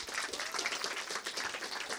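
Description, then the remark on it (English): A crowd applauds the evening's volunteers, many hands clapping in a dense, even wash of sharp claps that holds at a moderate level throughout with no talking. “So big round of applause for them, please.”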